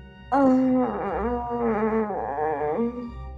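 Someone yelling from downstairs: one long, loud, wavering vocal cry lasting about two and a half seconds, its pitch dipping and rising in a drawn-out, moaning way, with no words.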